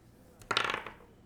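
A die is rolled across a tabletop during a game, a quick clatter of a small hard object tumbling and rattling, a burst of rapid bright clicks that fades out within about half a second.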